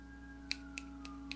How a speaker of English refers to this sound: Poetry night. Finger snaps. Feel the vibe.